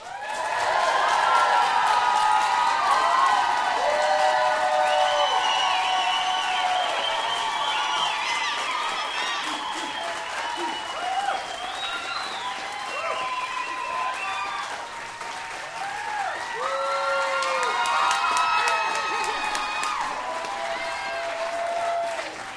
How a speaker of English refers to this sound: I want y'all to get up out of your seat and please applaud for the amazing Sex Nerd Sandra.